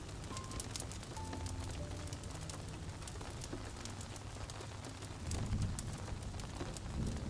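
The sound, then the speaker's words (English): Steady rain patters on leaves, the ground and the roof of a log cabin, a dense, continuous hiss of drops with sharper individual taps scattered throughout and a low rumble underneath. “And you can hear it tapping the leaves the ground and the roof of the log cabin.”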